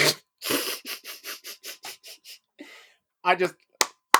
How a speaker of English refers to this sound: This is me fucking clapping for you, man.